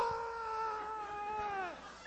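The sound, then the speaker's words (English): A man's voice imitates a scream: one long, loud, high-pitched wailing cry held steady for nearly two seconds before sliding downward in pitch and cutting off. “This guy is screaming.”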